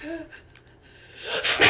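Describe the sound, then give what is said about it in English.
A person voices an imitation of their own loud sneeze: a short breathy intake, then a sharp, hissy burst near the end. “If I sneeze, I'd go.”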